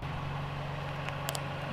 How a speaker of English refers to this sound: All right, we're out here in the parking lot. I'm gonna run over it with my car. Gross vehicle weight is 2,955 pounds. Let's see how it does.